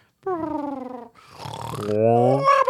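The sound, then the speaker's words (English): A voice imitates cartoon snoring: a long drawn nasal tone, a breathy rushing exhale, then another voiced snore that rises in pitch at the end. “Yeah, in the cartoon, when they snore, it goes like this.”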